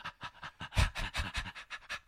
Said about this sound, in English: Now, make those panting sounds.